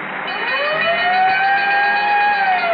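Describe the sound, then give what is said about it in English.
A loud siren with a bell, the radio signature for Texaco Fire Chief gasoline, winds upward in pitch and then holds a steady, piercing wail, with several harmonic tones layered over a dense, noisy background and no talking. “Until then, whenever you hear the siren and bell, remember fire, chief, gasoline.”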